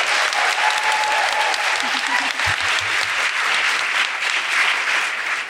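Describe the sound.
Sustained applause from a sizable audience, dense and steady clapping filling the room for several seconds, with a faint voice briefly audible beneath it.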